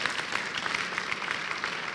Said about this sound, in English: You clap like children who have received cake.